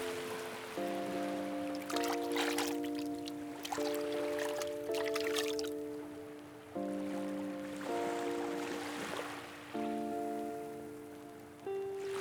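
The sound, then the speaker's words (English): Bursts of splashing water come in clusters as a person wades into shallow water, set over a steady, sustained musical drone with no voices. “You take off your clothes and wade into the shallow water.”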